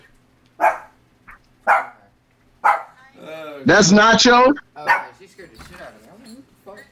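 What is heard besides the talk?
dog barking in background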